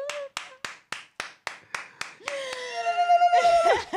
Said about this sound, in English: I really want to applaud right now. Okay, let's applaud.